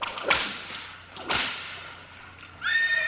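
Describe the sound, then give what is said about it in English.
Two sharp cracks ring out about a second apart, then a horse's high, shrill whinny begins near the end and carries on, clear, with no one talking. “Speaking of horses. That horse just went on and on.”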